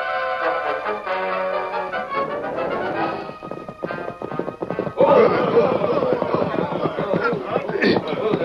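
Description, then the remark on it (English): Horse hooves clip-clop in a quick, steady, loud rhythm, with a horse neighing over a busy mix of other sounds and some voices. “Knocked him clean off the horse.”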